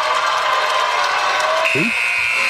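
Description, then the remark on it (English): A game-ending buzzer sounds partway through, a steady high-pitched electronic tone that holds to the end and echoes, over a constant wash of crowd noise, at the end of a Detroit Mercy against IUPUI basketball game in a near-empty arena. “The echo off the buzzer.”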